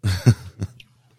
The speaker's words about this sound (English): Yeah, I was just yawning, man.